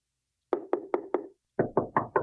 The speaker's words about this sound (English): Some spooky knocks.